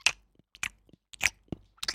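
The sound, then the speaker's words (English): Moist chewing of gum, a run of soft smacking and clicking bites at an uneven, steady pace, with no talking. “Chewing gum.”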